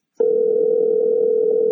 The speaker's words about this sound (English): You hear the phone ringing.